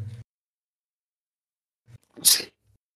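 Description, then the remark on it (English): A single sharp sneeze bursts out after a short quiet pause, preceded by a faint intake of breath and a brief low vocal sound at the start. “I had to sneeze real quick.”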